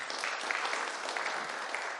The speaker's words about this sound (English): A round of applause for my artistic talent, please.